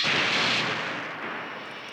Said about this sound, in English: Okay, it just says Death Star door. Listen one more time.